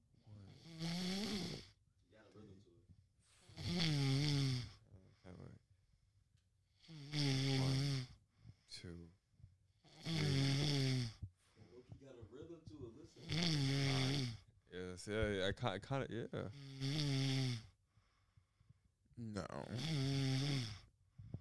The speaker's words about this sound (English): He don't got the headphones on. He can't hear the rhythm, but you hear the rhythm to his snoring. Right, his snoring has some rhythm to it, bro.